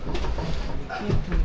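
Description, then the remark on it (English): Someone tries a locked door: the handle is rattled and pulled a few times in quick succession, producing short mechanical clunks against a steady, noisy background. “I think the door's locked.”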